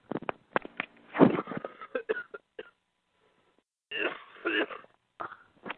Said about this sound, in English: Ooh, sorry. You okay? You're a little sick, huh? Yeah, I got a little cough. I've been periodically covering the phone and coughing.